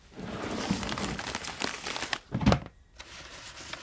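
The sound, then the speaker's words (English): Dry crinkling and rustling of old paper scraps from a rat's nest being handled, with irregular crackles and a louder burst of crumpling near the end, then quieter shuffling. No one speaks. “It is a small fragment, I would think, of paper.”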